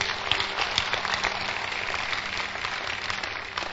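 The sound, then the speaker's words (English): A crowd claps steadily, a dense patter of many hands at moderate loudness that keeps going for the whole stretch without pausing. No one speaks over it. “All right, clap your hands for my ashes.”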